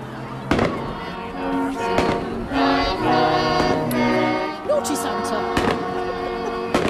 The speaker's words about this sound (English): Ooh, fireworks. Wow.